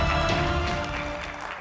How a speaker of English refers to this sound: Seriously, don't applaud that. Don't applaud that. You're only going to encourage them, all right? You're only going to encourage.